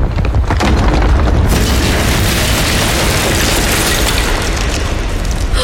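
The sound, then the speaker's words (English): A massive palace door caves in with a deep, booming crash, then a loud continuous roar of collapsing debris, bright crackling texture joining after the first second and rumbling steadily on without voices. “We cleared the threshold just as the palace door caved in.”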